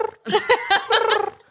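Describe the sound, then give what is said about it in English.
A voice imitates pigeons cooing: a brief warbling burst of throaty, gurgling coos in a few quick pulses, then it trails off into quiet. “That's the pigeons.”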